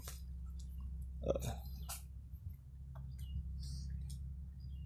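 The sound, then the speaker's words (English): Many monkeys moving around: scattered rustles, clicks and short high-pitched squeaks over a steady low background hum, fairly quiet, with no one talking. “I'm a bit distracted right now because there are a lot of monkeys around me.”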